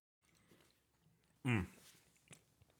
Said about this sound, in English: You still chewing? I was.